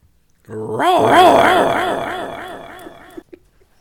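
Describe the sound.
A person lets out a loud, drawn-out roar lasting about three seconds, a rough, wavering growl from the throat that slowly fades before a few faint clicks.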